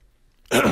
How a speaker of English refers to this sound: Oh, I tried to go away from the mic clearing my throat. You just straight up did it. Here I am trying to be all careful, and you just.